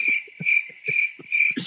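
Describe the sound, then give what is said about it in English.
Crickets chirp in a steady, repeating rhythm, bright, shrill trills pulsing about twice a second, with soft low rustling sounds scattered underneath and no voices. “Cricket chirps.”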